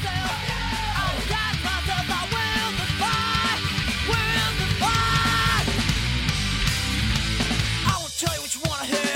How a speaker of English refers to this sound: This part here is coming up when he has a big scream. It's good. All right, singing a little bit here.